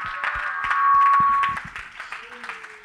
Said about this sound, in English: Oh, clap your hands and give God some praise right now.